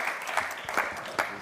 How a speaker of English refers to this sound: Right, if you'd like to give him a little clap. Thank you. Thank you.